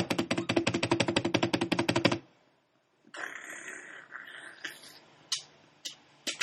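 Clock cogs turn with rapid, evenly spaced mechanical ticking like clockwork gears for about two seconds, then a short pause before a whirring, grinding mechanism with a few sharp clunks. No voices.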